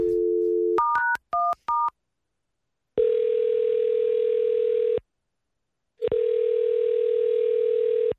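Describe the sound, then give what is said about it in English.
A steady telephone dial tone, a quick run of touch-tone keypad beeps, then two long, even ringing tones separated by a second of silence as a call is placed to a man whose car is in the shop for a tune-up. No one speaks. “So we're going to call and tell him that we need to hold on to his car for a little while longer.”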